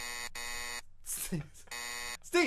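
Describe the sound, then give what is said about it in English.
Loud, buzzy censor bleeps cut in three times: two back-to-back tones, then a third after a brief stretch of speech. A voice speaks again right after the last bleep. “You just beeped something.”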